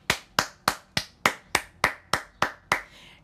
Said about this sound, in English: Can we give a round of applause, a standing ovation for How to Get Away with Murder?